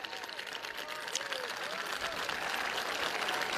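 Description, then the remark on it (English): A large crowd applauds a standing veteran of about 95, a dense wash of clapping that holds and swells slightly throughout, with faint murmured voices mixed underneath. “He's got to be 95 years old as the crowd applauses him.”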